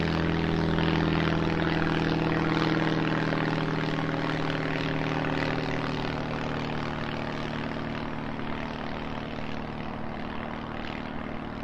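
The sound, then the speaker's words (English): A propeller plane flying very low, around 20 to 30 meters above the sea ice surface, during flight measurements, drones steadily and loudly overhead, its low engine hum and humming tones filling the scene before easing off slightly toward the end, with no voices. “we did some flight measurements very, very low above the sea ice surface, so around 20, 30 meters, and there were actually some polar bears that were quite frightened by our plane when we went along there.”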